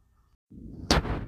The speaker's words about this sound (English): There's a jet flying above my head right now in the background. I hope y'all don't hear that. Or if you do, I deeply apologize.